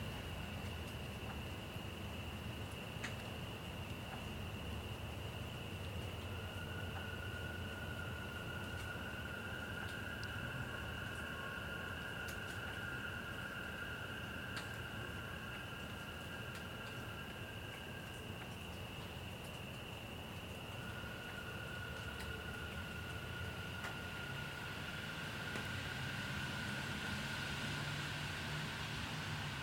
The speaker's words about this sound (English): But there's also the opportunity to hear things that in a more populated area would be covered by noise pollution, like the frogs. So spend 30 seconds with me now, just doing that, listening to the frogs and the occasional car.